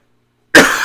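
A single loud cough bursts out sharply after a moment of silence, rough and breathy, with no talking around it.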